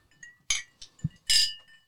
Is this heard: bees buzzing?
no